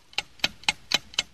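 A game timer ticks steadily during a player's turn in a game, five crisp, evenly spaced clicks about four per second, fairly quiet with no voices over them.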